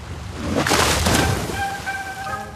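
A big splash of a man jumping into Lake Michigan on a very windy day, with the Chicago skyline in the background: a loud rushing burst that quickly subsides into choppy, wavy water and wind noise, with faint whistling tones trailing afterward.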